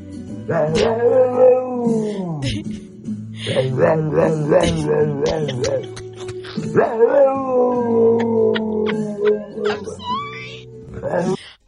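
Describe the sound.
A pit bull howls and yips in long, sliding, wavering notes, singing along to a song playing as steady background music, its voice rising and falling, loud.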